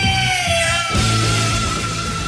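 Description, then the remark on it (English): A heavy metal singer gives a piercing, high-pitched scream that holds steady for a couple of seconds over loud, dense distorted band music. “But he's one of the greatest rock screamers of all time.”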